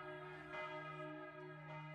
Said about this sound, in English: Meanwhile, church bells rang out, bringing more townspeople into the streets to join the standoff.